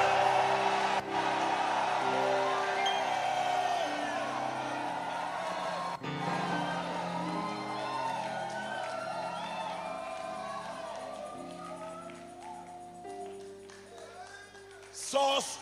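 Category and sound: crowd, audience shouting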